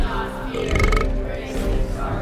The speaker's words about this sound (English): Did … just burp in your face?